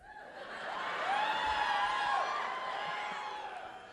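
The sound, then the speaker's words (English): A live audience at a late show in the Moore Theater boos Frasier together in a sustained, drawn-out chorus that swells to a peak and then gradually tapers off, with scattered voices and murmurs mixed into the crowd noise. “Are you booing Frasier?”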